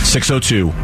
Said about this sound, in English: What was that thing saying the whole time? Fire! Like we're firing off a cannon. Fire! Where the heck did that come from?